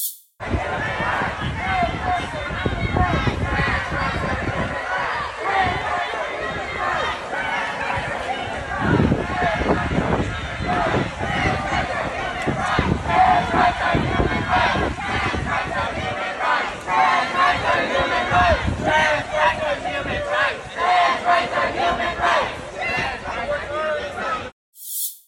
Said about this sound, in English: And as we were getting ready to drive away, they came over to the car to chant some more. Here's what that looked like.